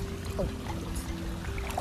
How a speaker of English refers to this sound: Forgive the background noise. It's a waterfall. So in the pool.